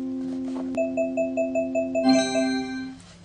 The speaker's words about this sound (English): I was just turning it around until I heard the beeps and then I stopped turning it.